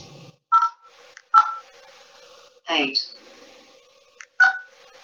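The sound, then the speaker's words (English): Three short, clear phone keypad beeps as a number is dialed, irregularly spaced over a few seconds, with the phone's readout voice calling out the numbers between them against a quiet background. “If I'm going to dial in a number, let's say I go, oh.”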